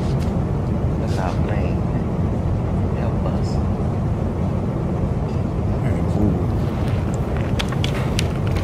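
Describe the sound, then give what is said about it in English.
A steady, loud airplane engine drone fills the whole stretch, a dense low rumble like cabin noise, with muffled voices murmuring underneath. “Look at our plane.”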